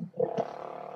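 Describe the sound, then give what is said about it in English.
A motorcycle engine growls along the road, a steady, buzzing drone with a rough surge just after the start, holding at an even level through the second with no voices. “Somebody ride the motorcycle up the road.”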